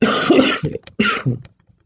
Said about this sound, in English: And cough. Like, I'll cough like this for...